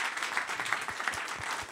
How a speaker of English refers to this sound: Round of applause